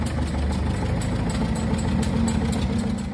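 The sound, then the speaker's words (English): The engine of a 1948 Minneapolis-Moline Z farm tractor, still used for farm work in Ohio, idles steadily, a deep rhythmic low-end chug with fast repeating firing pulses and a faint metallic knock, no voices over it. “This week, we're Ohio-bound to check out a Minneapolis Mullion Z that still gets plenty of work done on the farm.”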